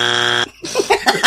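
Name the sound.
phone ringtone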